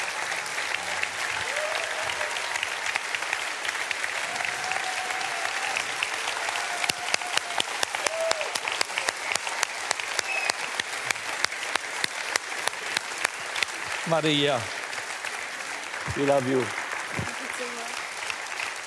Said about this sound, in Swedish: Ge en riktig applåd.